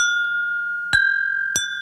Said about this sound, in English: Let's cheers again. I don't know if you, you might be able to hear it. It doesn't sound as good.